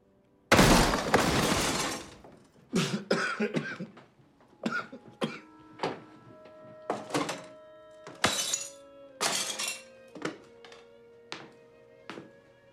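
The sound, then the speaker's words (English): A door is kicked in with one loud crash, in a film scene where the character Bigfoot kicks down a door, followed by about ten sharp thuds and clattering impacts as glass shatters and shards ring out. No voices. “And then you've got the scene where Bigfoot kicks down his door, which is fucking hilarious, right?”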